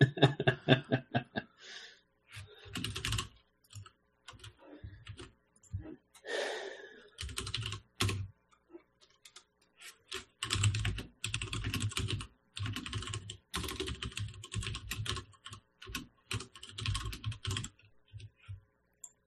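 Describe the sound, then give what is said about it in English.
Crisp clacking of mechanical keyboard switches on a blank keyboard, typed in quick uneven bursts with short pauses, and a brief soft chuckle partway through. “Beautiful mechanical switches on a blank keyboard.”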